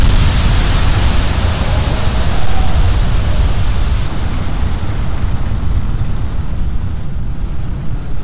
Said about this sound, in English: Vehicle's pitching downrange. We've just had a nominal liftoff of our Falcon 9 vehicle carrying our Starlink payload on its way to its targeted orbit.